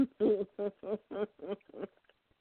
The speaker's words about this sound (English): The joys of bird ownership. Is my phone ringing or is it the bird?